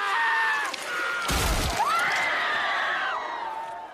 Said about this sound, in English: The Mandalorian, which is set in the Star Wars universe and centers on a bounty hunter played by Pedro Pascal, aka the Red Viper from Game of Thrones, aka the screaming guy featured in this clip.